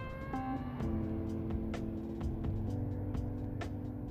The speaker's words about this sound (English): There's a lot of traffic for Wednesday at midnight in Boise, Idaho, on the Vista Bench.